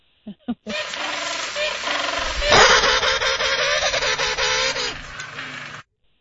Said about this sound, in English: That's a penguin. That's a penguin?